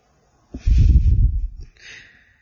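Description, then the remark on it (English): A voice imitates a single snore of a boy lying in bed in a bedtime story: a rough, rattling snort of about a second, followed by a softer, breathy exhale, fairly loud, with no speech. “Oliver began snoring.”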